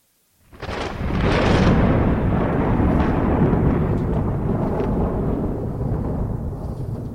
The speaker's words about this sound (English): Love that thunder.